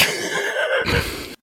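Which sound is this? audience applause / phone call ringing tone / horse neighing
horse neighing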